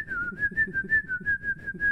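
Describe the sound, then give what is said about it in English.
A person whistles a steady, clear melody, one of the Looney Tunes theme tunes, holding a fairly even pitch over a soft, murmuring low background, with no talking. “Is he whistling like the?”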